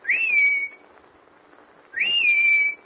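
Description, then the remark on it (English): A person whistles a signal call twice, each a quick rising note that levels into a long held tone, separated by about a second of quiet. Loud and clear, with no talking. “Nancy knows my whistle. She'll answer it.”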